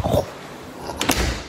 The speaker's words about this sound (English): And when you open this door right here, that's hard to open.